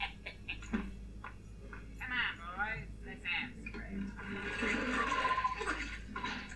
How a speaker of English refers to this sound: Splash, splash.